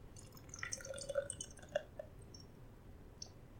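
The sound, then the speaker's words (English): Beer poured into a glass, a steady low fizzing rush dotted with quick bright drips and little bubbly pops for a few seconds, with no one talking. “This looks like the one I want to put in a glass. I'll be right back. Welcome to episode 36. Let's pour this guy.”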